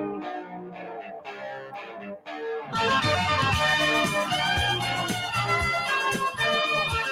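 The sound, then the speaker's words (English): A distorted electric guitar plays a quick, bright melodic riff, and a few seconds in a full, loud rock band crashes in beneath it and drives the riff forward. “Is that the part of the riff you love? Yeah, that's it.”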